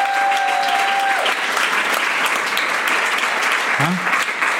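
A crowd at a live show breaks into sustained applause for the person doing the sound, dense and steady clapping at a loud, even level throughout, with a brief tonal whine fading early on and a short low thump near the end.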